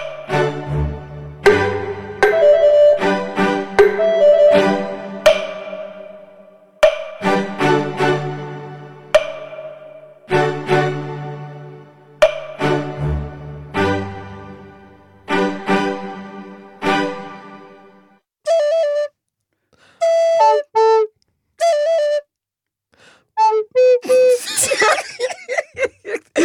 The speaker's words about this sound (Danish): vi har jo to fløjter med i studiet. Så vi tænkte, vi lige kunne øve os lidt på den her